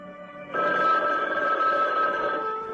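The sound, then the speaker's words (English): In a movie trailer, a telephone rings loudly and steadily, a bright sustained electronic tone starting abruptly after a softer lead-in and continuing without pause, with no voices over it. “But above all, if you are alone, don't answer the phone.”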